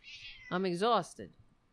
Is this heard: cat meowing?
yes